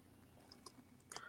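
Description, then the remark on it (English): Dice are rolled on a hard surface for an intelligence plus wisdom roll in a game: a couple of light isolated clicks, then a quick cluster of sharp clatters near the end, quiet, with no talking. “I have dice. Hold on. Roll.”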